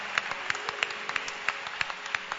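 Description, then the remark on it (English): A church audience clapping hands for their pastor in a steady, quick rhythm, sharp claps repeating about three times a second over a soft background wash of more scattered clapping, fairly quiet overall with no talking. “Clap your hands for him.”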